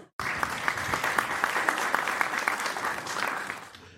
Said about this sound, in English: This is where the audience would gasp or clap. I know, right?